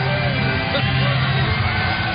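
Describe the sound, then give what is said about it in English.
A large arena crowd at the Impact Zone cheers and yells during the live show Impact, in one dense, steady roar that never lets up, with scattered shouts and whoops rising out of the wash of noise. “Well, when you say that the stroke going comes out to the Nature Boys music, and you hear the reaction from the crowd here at the Impact Zone on this live Impact.”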